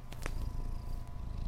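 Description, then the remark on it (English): A cat purrs steadily, a low continuous rumble with soft pulsing texture and a couple of faint clicks, with no talking. “I know he really wants to explore every aspect of this house, but kitty, you gotta be safe.”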